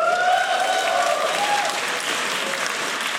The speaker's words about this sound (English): And I think part of the applause was based on just that that's a feature people wanted, but I also think part of it was that a lot of people might have assumed that that was not going to happen.